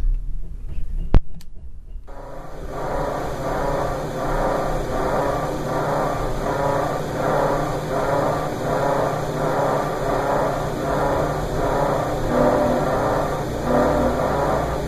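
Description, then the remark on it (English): After a brief quiet stretch and a faint click, a refrigerator in an apartment starts up into a steady, loud mechanical drone with a throbbing, pulsing rumble and thin whining tones riding on top, with no voices. “Wait, here's my refrigerator again.”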